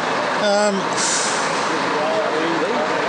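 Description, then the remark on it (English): A bus idles with a steady rumble; a brief tonal squeal is quickly followed by a sharp, loud hiss of air brakes releasing, then the engine drone carries on. “I reckon if you got on this bus, your entire career in the media would be over within minutes.”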